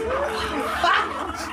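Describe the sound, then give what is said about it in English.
A person mimics a clucking chicken, a quick run of squeaky, pitch-bending vocal noises lasting a second or two, fairly loud. “Now you had chickens in the bathroom.”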